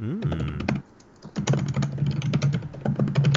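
Rapid, continuous typing on a new computer keyboard with dense clicky keystrokes, fairly loud, pausing briefly before resuming; a low murmuring voice sits faintly underneath.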